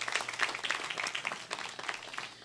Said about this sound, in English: Y'all give them a hand clap this morning.